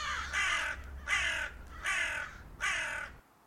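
A crow caws four times in a steady rhythm, each call harsh, raspy and loud, with short pauses between and a faint low rumble underneath.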